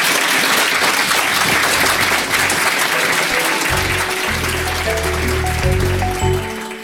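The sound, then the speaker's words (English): A crowd gives the guests a sustained, dense round of applause, steady and loud throughout before easing off at the very end, with a faint low hum underneath. “And can we all give our lovely guests a round of applause?”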